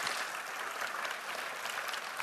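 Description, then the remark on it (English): The audience at Orangewood applauds steadily at a morning service, a dense wash of many hands clapping at an even, sustained level with no voices standing out. “This crowd is already a little excited. I didn't get no hand claps the first service.”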